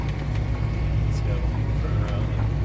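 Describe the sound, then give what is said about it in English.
A tractor's engine rumbles in a loud, steady low drone as the tractor drives itself over a bumpy field, retracing the erratic path it was just driven along, with a few brief rattles and jolts breaking through the constant hum. “his hands off the wheel, and then we're bumping along in the tractor as it retraces the erratic path that we just drove.”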